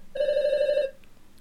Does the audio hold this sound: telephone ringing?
yes